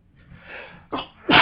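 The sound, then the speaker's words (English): A single loud sneeze: a breathy inhale, a short catching "ah," then a sharp, explosive burst that ends the sound. No one speaks. “And he let out a big sneeze.”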